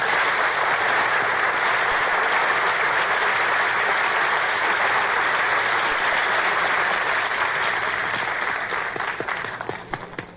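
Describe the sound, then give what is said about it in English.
Sustained crowd applause during a broadcast as Dooley Wilson is introduced as master of ceremonies: a dense steady wash of many hands clapping at a loud level, starting to thin out and break into scattered individual claps in the final seconds. “Dooley, you're not supposed to applaud yourself.”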